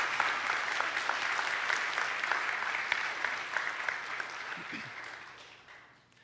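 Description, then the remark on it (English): An audience claps in a dense, steady patter of many hands, sustained for several seconds before gradually thinning and fading out at the end. “You can clap now. I interrupted the clapping for that, so...”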